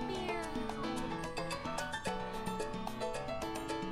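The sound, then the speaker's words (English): A cat meows repeatedly in steady, tonal cries that run together with little pause, fairly loud and with no one talking. “This week's episode of Not a Couple was recorded in front of a live studio audience of one cat. Meow.”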